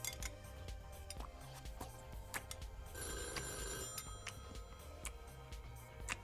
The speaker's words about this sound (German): Nanu, ein Anruf in der Mittagszeit?